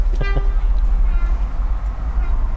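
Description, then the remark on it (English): A train rumbles past close by at a British railway station, heavy and loud, and its driver gives two quick toots of the horn right at the start, acknowledging a raised hand, before the low roar carries on alone. “I put my hand up and he give me another beep to acknowledge that.”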